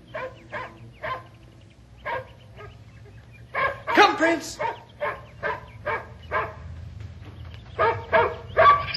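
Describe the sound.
A dog barks again and again in short, fairly loud bursts during obedience training, with a quicker flurry near the end, while a man calls out a brief command.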